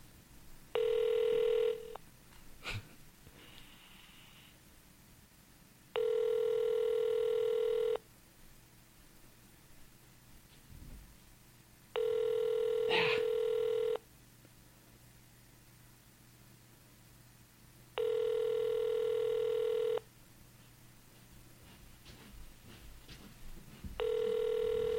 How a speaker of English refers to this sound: No one fucking answers their damn phones.